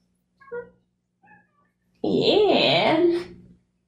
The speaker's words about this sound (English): Oh, now you want some love, Fate? Meow. Okay. I see how you feel. You gonna meow for everybody?